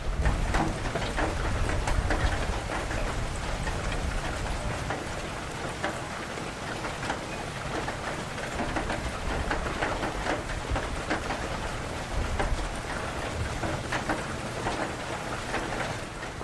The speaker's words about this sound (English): There is water pouring literally everywhere.